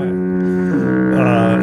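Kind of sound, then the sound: sound effect, foghorn blast sound effect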